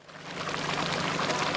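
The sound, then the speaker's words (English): A steady, continuous stream of milk pours and splashes into a large cheese vat where Parmesan is being made by a cheesemaker, a broad rushing hiss that swells slightly at the start and then holds constant, with no voices. “And the milk is just pouring out of this.”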